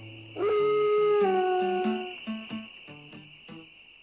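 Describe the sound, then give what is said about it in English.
A man imitates a wolf howl: one long, loud, sustained wail lasting about two seconds, followed by several shorter, fading yelping howls, with no talking. “That's where you get them howling.”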